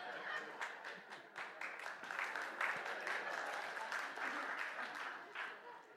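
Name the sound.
audience clapping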